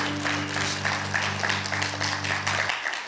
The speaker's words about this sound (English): Amen. Amen. One more time, can we give the Lord a hand clap of praise?